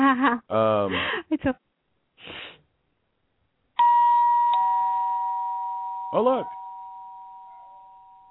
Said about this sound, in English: Ding dong.